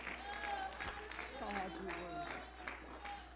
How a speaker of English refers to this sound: Why don't we just clap our hands as we turn? I know you have your Bibles, but clap something. It doesn't matter. Just give them a little bit of praise.